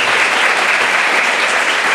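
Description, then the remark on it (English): Steady, dense audience applause at a live Vergecast show, a loud even wash of many hands clapping for a guest with no pauses and no voices standing out. “Let's give a round of applause for Hiroshi.”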